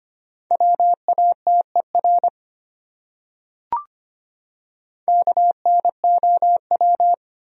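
A steady mid-pitched beep keyed into quick dots and dashes of Morse code at 25 words per minute, spelling one of the 100 most common words, sent in two rapid bursts separated by a pause broken only by a single soft click. No voices.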